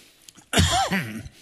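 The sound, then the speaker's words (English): A single harsh cough bursts out loudly and trails off with a voiced, raspy tail, with no talking around it. “Sorry. I do this coughing thing.”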